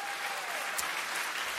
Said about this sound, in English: Everybody give Next Gen a big round of applause. Come on.